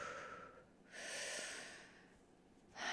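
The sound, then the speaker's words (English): A slow, deep breath drawn in and let out, the airy inhale and exhale rising and fading across a few seconds, then another breath beginning. No talking. “We first breathe.”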